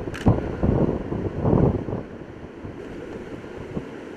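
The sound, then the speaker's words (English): Loud, buffeting wind gusts on a beach, suddenly picking up by 5 to 10 miles an hour, roar across the microphone in uneven surges, strongest in the first two seconds, then settle into a steady lower rush with faint surf beneath. “Notice the wind just picked up 5 to 10 miles an hour just all of a sudden, and the waves are already showing that.”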